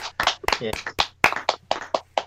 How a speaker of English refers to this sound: I just want to give him a big massive round of applause, actually, for doing all this.